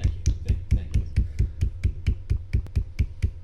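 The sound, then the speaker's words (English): Two people clap their palms together, giving a round of applause while being filmed, in a quick, steady rhythm of about fourteen sharp, evenly spaced smacks over a few seconds, with no one talking. “I'm just going to point out, though, we were giving him a round of applause. We were both smacking our palms, and that on camera looks fine, right?”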